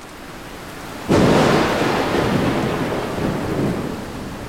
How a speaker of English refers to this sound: The place was flooded. There was water everywhere. It started to pour rain at about midnight until 4 a.m.